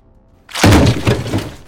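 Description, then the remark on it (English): A sudden, loud crash of an uncontrolled vehicle smashing into a man's upper body and running over him, with glass shattering: one heavy hit followed by a brief scatter of breaking debris that quickly fades, with no voices. “The bulk of the vehicle smashed into Nishachar's upper body, and as he landed sideways, it ran over him and crushed his body.”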